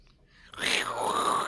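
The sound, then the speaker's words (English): A person voices a single drawn-out, breathy snoring noise for fun, fairly loud, rising in and then wavering like an exaggerated exhale, with no words spoken. “Do you know what snoring sounds like? Yeah, but for fun, you gotta make up different noises.”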